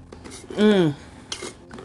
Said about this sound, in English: Excuse me. I just had to take a drink of my water.